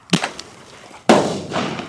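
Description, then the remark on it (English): Two sharp, explosive bangs from bird bangers fired to scare eagles away from free-range chickens: a smaller crack at the start, then a much louder blast about a second later that rumbles and fades out. No one speaks. “We can move them with the bird bangers.”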